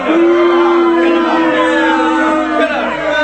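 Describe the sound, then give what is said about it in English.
A loud crowd reaction sound effect: many voices blending into a sustained, disapproving groan that holds steady for about three seconds before thinning slightly at the end. “The crowd was not feeling you guys on that one.”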